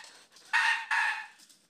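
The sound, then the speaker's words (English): A squeaky toy squeezed twice in quick succession, two loud, shrill, slightly wavering squeals back to back, with no talking around them. “I squeak the squeaky toy.”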